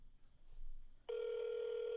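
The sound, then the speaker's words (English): A phone call to a man who does not answer: after about a second of near silence, a loud, steady electronic ring tone starts and holds unbroken until the end, with no voices. “Yeah, he's not going to answer. Your call has been forwarded.”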